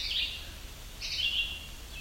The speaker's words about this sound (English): Sounds kind of like a rubber toy. That is yellow-bellied sapsucker.